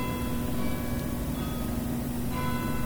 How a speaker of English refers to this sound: Can you hear those church bells chiming?